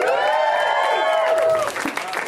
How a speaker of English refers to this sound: Put your hands together. Get ready to clap. Put your hands together. Put your hands together.